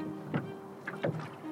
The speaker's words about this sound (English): This time we are on a rowing boat out on the lake in the early morning.